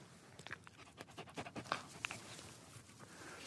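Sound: dog panting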